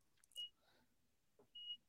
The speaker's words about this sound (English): It started beeping on me. It's still beeping. I thought I was having a heart attack.